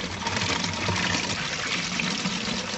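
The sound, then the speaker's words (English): A bottle with a hole in it, covered with a finger, being filled right the way up with water: a steady rush of running water pouring in without a break for the full three seconds, with no voices. “if you'd like to fill the bottle up with water”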